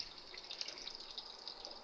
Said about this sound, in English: Go back under the water. By putting a little water on the fork, it's going to keep the cookie from sticking to it.